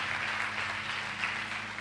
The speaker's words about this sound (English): Clap for Jesus if you understand anything I'm talking about.